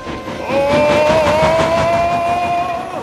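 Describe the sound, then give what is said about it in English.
The steam engine Gordon chugs along with a steady rhythmic chuff, while a long, level whistle sounds over the rumble from about half a second in and holds to the end. No one speaks. “Silly little engines.”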